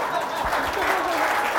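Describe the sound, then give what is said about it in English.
A crowd applauds steadily, a dense wash of many hands clapping at an even, fairly loud level for the whole short stretch, with a faint murmur of voices underneath. “Big round of applause”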